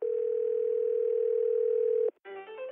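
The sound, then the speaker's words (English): A single steady, mid-pitched ring tone of an outgoing phone call to the Top Dogs detective agency holds for about two seconds, then cuts off as its recorded answering message begins to speak. “Unfortunately, though, when I called them, they were out.”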